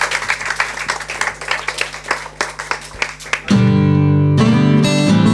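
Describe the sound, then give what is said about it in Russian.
An audience at a live concert on Old Fashioned Radio claps steadily for the musician in a dense wash of applause for about three seconds, then a loud sustained musical chord cuts in and carries to the end. “Еще раз аплодисменты для музыканта.”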